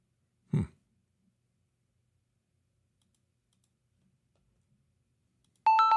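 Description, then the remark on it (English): A single soft tap, then several seconds of near silence before a clear, steady electronic ringing tone starts up right at the end as an outgoing phone call to a pastor begins to ring during a live morning prayer show. “I guess I could call him right now.”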